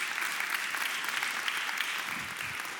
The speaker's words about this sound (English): Thank you for that clap.